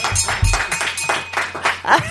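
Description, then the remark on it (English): Hands clap in a quick, steady run of about eight or nine sharp, fairly loud smacks across roughly two seconds, with a faint continuous hum beneath and no talking. “Clap out.”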